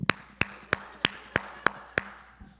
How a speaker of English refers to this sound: Fights would happen. What are you clapping at me? Rude.